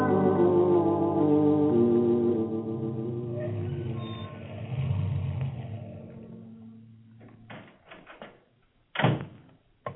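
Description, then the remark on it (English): A car that has just hit a man drives on, its engine droning steadily for several seconds, its pitch wavering, then fades out, followed by a few sharp clunks and knocks like doors or handling noises. “Tony, stop the car!”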